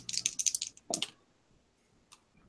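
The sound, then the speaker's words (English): Dice for a sanity roll in a game clatter in a quick rattling burst of small clicks, followed by a couple of brief knocks and a few isolated taps as they settle. No one speaks. “Why don't you all do a sanity roll?”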